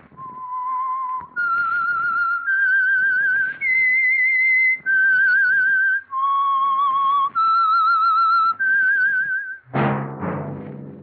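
A lone whistled melody, the signal for the Signal Oil program The Whistler, of sustained, wavering notes that step up and down in pitch, clear, followed by a brief burst of orchestral sound at the end.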